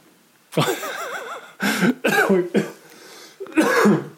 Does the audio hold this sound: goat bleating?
no